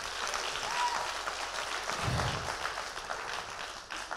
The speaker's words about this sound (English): Clap your hands and I'm alive. Come on, people.